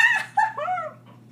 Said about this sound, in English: I'm so sorry to anybody who's wearing headphones. I did not mean to let out that shriek.